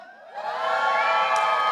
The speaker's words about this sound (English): That's a very reserved, I'm in church scream, okay? That's all right. You're going to warm up. You're going to go.